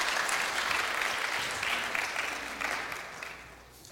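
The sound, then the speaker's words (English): An audience at a Father's Day service applauds steadily as a man comes up to share his story, a dense wash of many hands clapping at a fairly loud, even level, with no voices, before gradually thinning and tapering off toward the end. “Would you please give him a round of applause as he comes up to share his story?”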